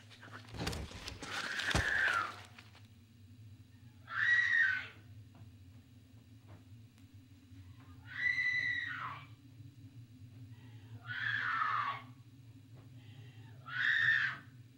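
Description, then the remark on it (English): In a film, a woman upstairs screams again and again, five shrill, wavering cries spaced a few seconds apart, somewhat distant and muffled over a steady low hum, recorded by audio equipment as she gets closer to it. “It's the sound of her screaming getting closer and closer to his audio equipment.”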